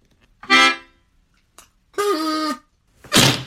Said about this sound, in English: Okay, should we all test our buzzers?